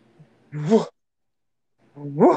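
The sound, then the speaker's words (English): A person imitates a dog with two short, loud barks, separated by a pause of over a second. Each bark rises sharply in pitch. “Let me just bark like a dog.”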